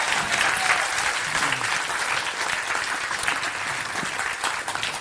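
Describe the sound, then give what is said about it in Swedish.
An audience claps steadily, a dense, even patter of hands that holds its level for several seconds with no one speaking over it. “Ja, ni kan få gärna applådera.”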